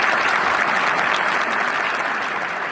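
Steady, dense applause from an audience for a panel, a continuous wash of many hands clapping at an even loudness for a few seconds, with no voices standing out.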